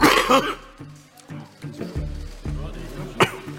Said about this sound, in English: when midstream, the Treasurer suffered a dry hacking coughing fit.